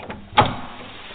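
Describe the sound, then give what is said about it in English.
A single sharp clunk and metallic rattle of a door handle being tried against a lock, followed by a quiet fading resonance with no voices. “Doors are locked.”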